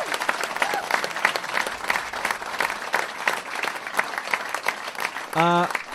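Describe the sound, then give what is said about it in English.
A live show audience applauds, with dense, steady clapping for several seconds, then a single loud voice cheers briefly near the end. “I'd like you to please give my dad a huge round of applause for everything he does.”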